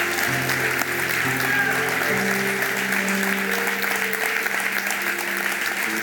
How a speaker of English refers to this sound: Give the Lord a clap.